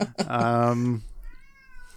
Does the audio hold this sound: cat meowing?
yes